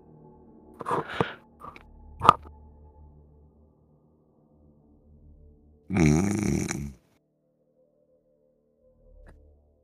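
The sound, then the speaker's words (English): A voice mimics snoring while role-playing a character sleeping: a few short snorting sounds early on, then one long, loud, rattling snore-like breath lasting about a second, with quiet between and no speech. “I just imagined that Vidrig would snore, so.”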